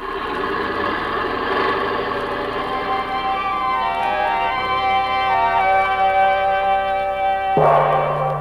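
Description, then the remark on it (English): A bell rings with a long, shimmering resonance that hangs in the air, fairly loud, then is struck again near the end with a fresh, bright clang. No one speaks. “Look what the bell brought.”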